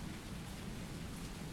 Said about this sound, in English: But the winds started to pick up. The rain has increased, and it started to pour, and the rain got harder and harder. The storm has set